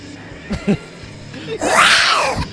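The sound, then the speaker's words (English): Movie sound effects: two short, low jaguar-like growls are followed by a loud, drawn-out elephant trumpet that rises and then falls in pitch, all over a faint background hum. “Okay, I love that there's like a jaguar sound effect and then an elephant sound effect.”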